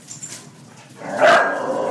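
A dog barks, a loud harmonic bark that begins midway through and carries on with some whining tone until the end, after a stretch of quiet background.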